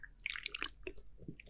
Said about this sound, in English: before we start, let me just take a sip first